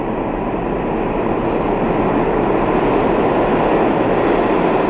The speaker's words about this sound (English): Hold on, here come a train.